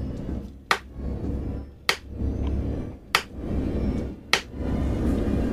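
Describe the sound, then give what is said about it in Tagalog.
An old typewriter in a house clacks out four sharp, separate keystrokes at a slow, steady pace, about a second apart, over a low continuous rumble with no voices. “Tumunog na ang lumang makinilya.”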